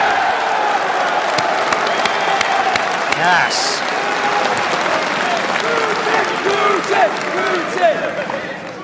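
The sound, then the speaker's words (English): A large audience at the America First Political Action Conference claps steadily and loudly after a call for a round of applause for Russia, with scattered whoops and cheers rising over the dense applause; one voice briefly speaks a word amid the noise. “Can we give a round of applause for Russia?”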